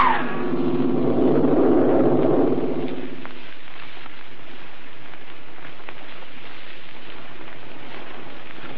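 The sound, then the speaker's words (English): A dense, rumbling cluster of low piano notes sounds at once, caused by Dr. Bedeau's body pressing against the keyboard, swelling for about three seconds before fading into a steady hiss. “body pressing against the keyboard that caused the rumbling you thought”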